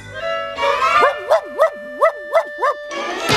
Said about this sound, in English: And then Elmira just barking at her.